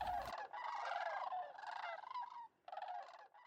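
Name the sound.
sandhill crane calls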